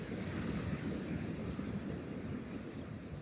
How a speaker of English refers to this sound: At the moment, we're experiencing the outer edges of Storm Otto. when the gusts are not much above 25 to 30 mile an hour, they're much stronger further north. Nevertheless, the Atlantic-blown winds bellow and roar through the tops of the trees